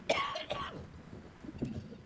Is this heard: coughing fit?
yes